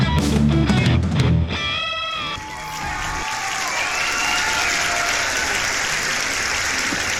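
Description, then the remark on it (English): An audience breaks into steady, dense clapping that holds at a constant level for several seconds, following a brief burst of music at the start. No one speaks. “Oh yeah, may clap ah.”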